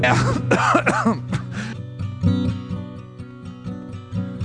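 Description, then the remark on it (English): An elderly person gives a few rough, raspy coughs and throat-clearing grunts in a quick cluster at the start, over a steady musical backing that carries on rhythmically after they stop. “And at my age, the coughing makes me hurt.”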